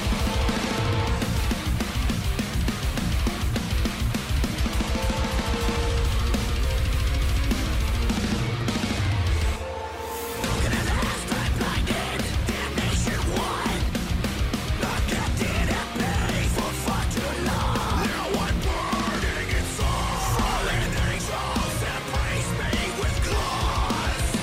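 A loud, dense metal song with keyboards layered over heavy distorted guitars and pounding drums, broken by a short pause partway through before the full band crashes back in.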